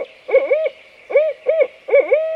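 A barred owl hoots in a loud series of four quick, throaty calls, each rising and falling in pitch, with brief pauses between them and no one talking.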